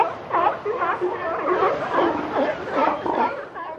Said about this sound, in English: A sea lion? That is correct, a sea lion, yeah. I think we can both agree, a needy sea lion.